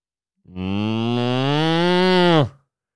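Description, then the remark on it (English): A person's voice imitates a cow with one long, loud moo, held steady for about two seconds before dropping off sharply at the end. No talking is heard. “No, it's because I can do an impression of a cow.”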